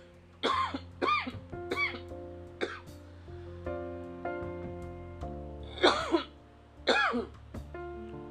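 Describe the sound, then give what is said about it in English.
A man coughs repeatedly from an allergy attack in harsh bursts, three quick coughs, a pause, then two more forceful ones, with some throat clearing, all over a steady bed of soft background music. “Sorry, just allergy attack.”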